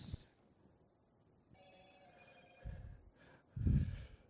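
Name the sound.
cell phone ringing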